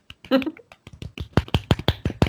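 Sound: quiet golf clap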